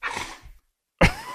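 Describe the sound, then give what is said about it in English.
A female dog scratches hard and tussles with a bed: a half-second of rough, noisy scraping, a brief silence, then a sudden loud burst of rustling with a growly, tonal edge. “Now she's scratching really hard.”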